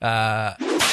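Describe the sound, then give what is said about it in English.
A voice imitates a whip crack: a sustained, buzzing hum cuts off into a loud, breathy swish and hissing snap, fairly loud, all within about a second. “You will need to hit it with a whip.”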